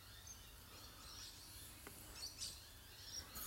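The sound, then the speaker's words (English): Faint, high chirps of birdsong scattered over a steady outdoor hiss, a few short calls rising from the background. “I listen to the bird song now so I can enjoy the bird song now.”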